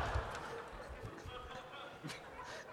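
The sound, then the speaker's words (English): Heavy footsteps stomp across a wooden stage in a loose, uneven rhythm of dull thuds, with a murmur of voices and crowd noise underneath. “and I'm sure by the time the ending of this reading is happening, the monkey is stomping around the stage trying to collect a settlement.”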